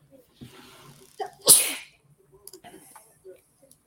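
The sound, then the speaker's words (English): A single sharp sneeze bursts out, preceded by a quick inhale and followed by faint breathy sounds and small movements. “Bless you.”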